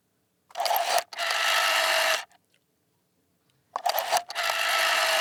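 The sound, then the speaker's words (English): A rotary phone dial is turned twice. Each turn starts with a quick rattle of clicks and runs into a steady, bright whirring buzz, with a short silent gap between the two. No voices. “It is a rotary phone.”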